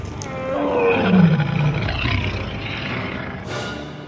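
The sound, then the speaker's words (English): A giant monstrous beast with the head of a snake, body of a leopard and legs of a lion lets out one long, deep, loud roar, rumbling and growling as its pitch slides downward before trailing off into a raspy snarl. “But just as Arthur was about to walk toward Excalibur, a giant beast with the head of a snake, body of a leopard, and legs of a lion appeared in Arthur's path.”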